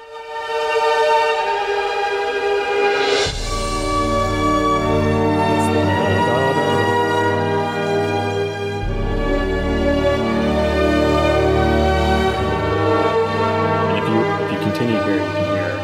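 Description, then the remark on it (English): High, glassy violin harmonics ring out and echo in long sustained tones, layered over a steady, deeper droning orchestral bed that swells in after a few seconds, with no talking. “High violin harmonics echo.”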